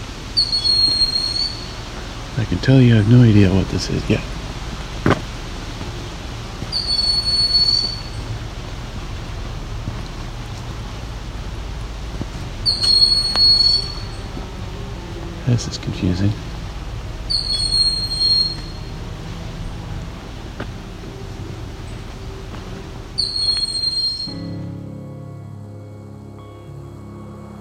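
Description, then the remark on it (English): A bird's shrill, high-pitched alarm call in a forest repeats about every five seconds over a low, steady rumble, with a person briefly speaking early on. “No, it is a bird or something, I guess. Making an alarm call.”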